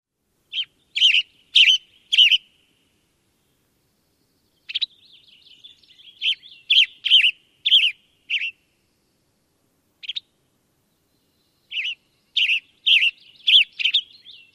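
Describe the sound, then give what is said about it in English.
A western tanager sings short, burry phrases in spaced groups of three to five notes, hoarse and slightly harsh in tone, with brief pauses between bursts, heard clearly on its own without any talking. “The western tanager tone is less musical, with a harsh or hoarse quality to it.”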